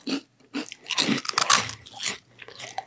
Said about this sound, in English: are you like freaking out right now with all these chewing sounds?